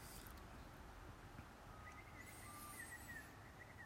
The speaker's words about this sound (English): And the birds are just getting started. Man, I remember when the birds were out at like 5:30.